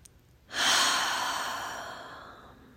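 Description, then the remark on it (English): A single slow, deep breath taken with one hand on the heart during a meditation, a long airy exhale that swells quickly and then fades gradually over a couple of seconds, soft, with no talking. “But if you are, if you can, just placing one hand on your heart and breathing here for just a moment.”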